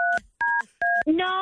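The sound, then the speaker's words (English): Three short, evenly spaced telephone keypad tones, each a steady two-pitch beep, pressed in a quick rhythm by a caller during a call with a customer service representative, followed at the end by a voice starting to speak. “Yeah, I'm not sure why you're still pushing buttons.”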